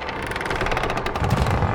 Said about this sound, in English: Through that howling wind, we hear something else, a crunching thud.